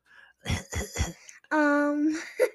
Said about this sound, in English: that was just daddy coughing.